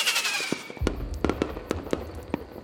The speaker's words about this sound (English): Finally, fireworks are set off above the lake.